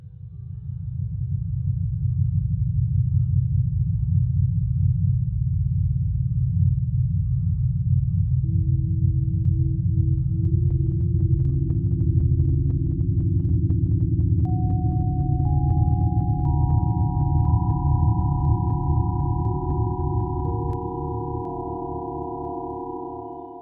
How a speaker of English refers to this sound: What you just heard are stellar sounds, waves emitted by very, very distant stars.